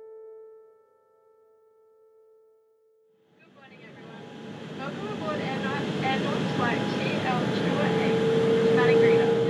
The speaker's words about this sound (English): In mid-April, I jumped on this tiny twin-engine plane to fly from Darwin to Madingreda in West Arnhem Land. A little nervous because the plane looks smaller than I thought it would be, and I'm a little bit of a nervous flyer.